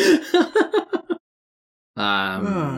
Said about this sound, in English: Why am I yawning so much? That is a question.